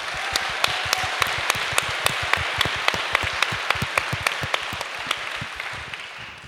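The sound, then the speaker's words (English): A crowd applauds the woman behind the minimalism social media, many hands clapping steadily in a dense wash with a few sharper claps standing out, sustained and fairly loud throughout with no voices. “So let's give her a round of applause, please.”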